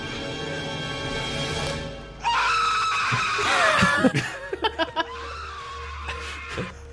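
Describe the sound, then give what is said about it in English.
In a movie scene, a man lets out a loud, raw, sustained, genuine scream as a spider is put on his face, rising over a steady mechanical hum, followed by a few sharp knocks as the noise dies down. “Such a good scream.”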